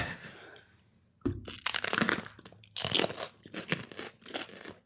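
A crisp bite into a long hot pepper, followed by several loud, wet crunching chews in an uneven rhythm, with a quieter rustle at the start and no talking.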